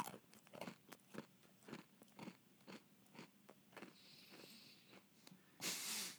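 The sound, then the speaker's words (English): Loud crunching as a man chews hard, dry dog treats in a steady rhythm of about two bites a second, ending with a brief burst of hiss. “Okay, so Colin's about to eat dog treats.”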